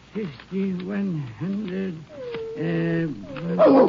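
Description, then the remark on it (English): A dog named Rags growls and whines uneasily at night in Irwin County, Texas, while a man counts a large sum of money: a string of low, wavering grumbles rising and falling in pitch over a few seconds, fairly loud with no talking. “As he was counting, his dog Rags appeared to be nervous.”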